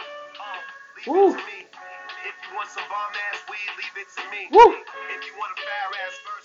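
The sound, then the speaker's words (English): A hip-hop track plays, rapped vocals running over a dense, sustained sampled beat with steady layered tones, at a moderate, even level with a couple of brief louder swells. “Yo, he went crazy on this record.”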